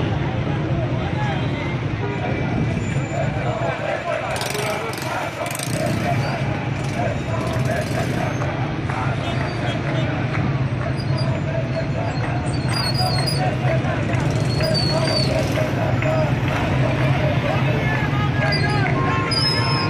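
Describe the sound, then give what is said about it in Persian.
A street in Qom blocked by people's cars during a protest: a steady low engine rumble of idling cars fills the scene, overlaid with a crowd's continuous murmur and scattered shouts, all dense for the whole stretch. “ماشین هاشون رو ریختن توی خیابون، خیابون ها رو بستن.”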